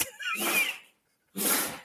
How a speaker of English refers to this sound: Can you hear that? Poor guy. Is that the dog? He's beagle. Oh. Maggie the beagle is sneezing.